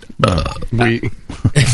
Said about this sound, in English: So it's got plenty of CO2 in there. It does, yeah. But it's not gassy. You're not standing around belching like we do on this show all night.